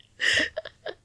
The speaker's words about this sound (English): I just yawned.